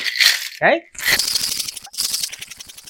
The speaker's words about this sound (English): And now the ice. And we'll give it a really nice, vigorous shake.